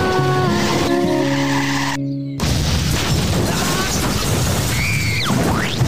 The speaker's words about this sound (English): They used a cartoon squishing sound effect.